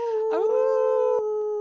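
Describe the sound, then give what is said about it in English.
A dog gives a single long, loud howl, rising briefly at the start and then holding one steady, wavering pitch for over a second, with no talking. “I shouldn't do that. My dogs. I'm going to get them started.”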